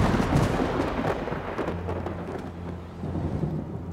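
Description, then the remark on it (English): A thunderstorm rumbles with deep, rolling thunder over a steady hiss of heavy rain, loud throughout, with no voices, in a Big Finish Productions audio drama of King Lear. “Let us withdraw. It will be a storm.”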